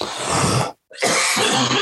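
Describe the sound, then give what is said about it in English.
Two loud, harsh coughs from a person who swallowed wrong, each a rough burst separated by a brief pause, with no talking around them. “Nice COVID cough there, buddy.”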